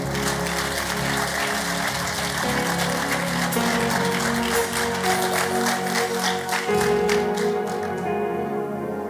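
An audience claps hands together as a clap offering to honor the Lord, a loud, steady, dense burst of applause lasting several seconds, with sustained musical tones humming underneath and no speech.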